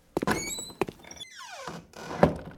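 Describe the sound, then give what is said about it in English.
A door thumps and creaks on its hinges with a long falling squeal, then is shut and locked with a solid knock and a sharp latch clack, fairly loud, with no talking. “I think he locked the door.”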